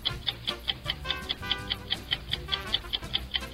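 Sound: ticking game clock timer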